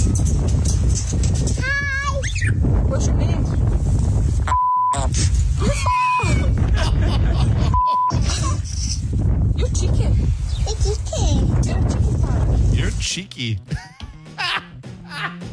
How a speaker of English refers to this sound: Well, here's a little clip of the birds. Okay. One of the birds at the zoo in Britain. Hey, Mr. Parrot, what's your name?